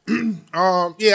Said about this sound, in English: That nigga definitely coughed on that